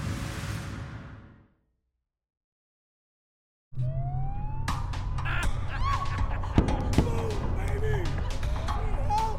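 A wailing ambulance siren in Manhattan rises and falls amid busy, noisy street ambience, with sharp bangs and a crow-like caw mixed in; it starts abruptly after a stretch of silence.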